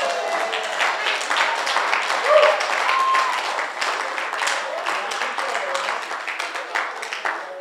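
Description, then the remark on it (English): A crowd claps hands steadily and densely for several seconds, a sustained wash of applause with faint voices and cries mixed in, loud throughout. “Why are you not clapping your hands?”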